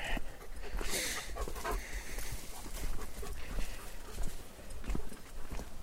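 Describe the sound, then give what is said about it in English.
A dog off its leash pants steadily, its quick breaths mixing with a rhythmic patter of footsteps on a trail, over faint outdoor noise. “I've yet to see any other human being on this trail besides myself and the dog.”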